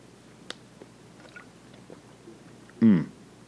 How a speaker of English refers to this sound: So I'm going to take a little sip of coffee, okay?